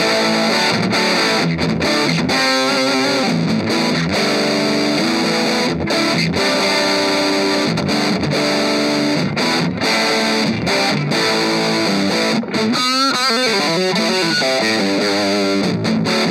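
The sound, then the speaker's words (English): Overdriven guitar amp crunch, with the main channel volume backed off and the gain turned up: a gritty distorted electric guitar playing chords and riffs with sustained rough harmonics, loud and steady throughout with brief gaps between phrases, no talking. “Definitely kind of crunch sound, so we can back the volume off a bit on the main channel and turn the gain up.”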